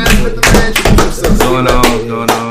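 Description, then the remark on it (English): Several sharp, irregular claps ring out, loud and uneven in rhythm, mixed with voices murmuring and calling out underneath. “Alright, so hold on, let's clap for my brother.”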